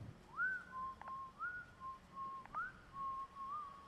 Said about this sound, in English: I sat and we waited. At exactly 3:03, we heard the whistling.